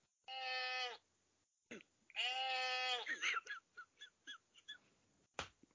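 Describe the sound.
Two loud, drawn-out sheep bleats separated by a short pause, followed by a quick series of brief vocal bursts that sound like people talking or laughing.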